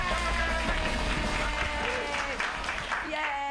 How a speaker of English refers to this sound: Everybody clap.